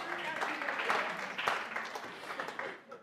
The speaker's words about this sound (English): Give them a great round of applause.